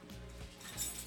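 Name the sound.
keys jangling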